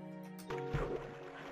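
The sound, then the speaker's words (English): A video game boat in Farlands or Bust moves across water with Wolfie drowning underneath it: a steady watery sloshing and splashing that swells in after a brief low hum and carries on at moderate loudness with no talking. “Wolfie drowning underneath my boat.”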